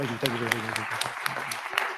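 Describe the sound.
An audience claps again on request: steady, evenly spaced hand claps, about eight sharp smacks in quick rhythm, with a voice sounding underneath during the first half.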